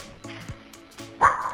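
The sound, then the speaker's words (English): A dog barks in short bursts over a muffled, phone-quality line on a 911 emergency call in Minnesota, one of two dogs whose absent owner left his cell phone in emergency call mode, with a louder, higher yelp near the end and faint background noise throughout. “Two dogs in Minnesota called 911 16 times last week, all in one day.”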